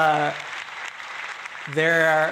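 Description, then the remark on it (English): An inserted applause sound effect: a short burst of crowd applause, a dense steady clatter of many hands clapping, with a sustained voiced cheer or tone at the start and again as it ends. “Can you insert like a clapping sound? Sure, a round of applause.”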